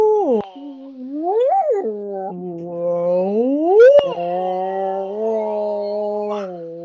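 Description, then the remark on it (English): A person imitates a whale singing happy birthday, drawing out long, swooping, warbling moans that glide up and down in pitch, steady for several seconds with no other talk. “I was trying to do like if a whale sang happy birthday.”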